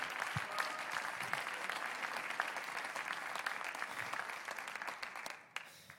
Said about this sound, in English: Let us respond unto the Lord with all of our hearts. Can you clap your hands one more time unto the Lord?